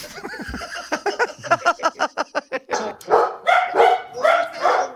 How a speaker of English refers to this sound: Oh, who's that? Oh, what's that? It's a few of the 8 dogs. Oh. I've had to stop doing Zoom meetings now, because when I go, hello, the dogs think there's someone at the door and they start barking.